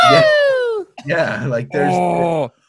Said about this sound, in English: There's talk about good sound design where like the one female scream and the one male scream manages to kind of match every character.